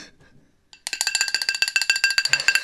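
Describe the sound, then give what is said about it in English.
The "Bill Bell", a bright, high-pitched bell, rings rapidly and loudly, struck over and over in a quick steady rhythm with shimmering overtones, after a brief moment of faint low sound. “Looks like we need to do another ring of that Bill Bell.”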